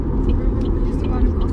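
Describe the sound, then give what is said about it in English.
An Amtrak passenger train rolls past, a steady, heavy low rumble that fills the whole moment without letting up, with faint murmured voices mixed in underneath. “Now, that's the Amtrak train.”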